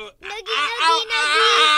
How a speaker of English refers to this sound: Scream! A brawl is broken out.